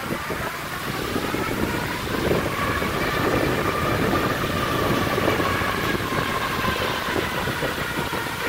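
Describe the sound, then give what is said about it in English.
Cross-country skis glide downhill in groomed tracks, making a steady, loud whooshing rumble with a faint whining tone that carries on without pause, like an engine at speed. “here's a little clip of what it sounds like to go downhill in them grooves.”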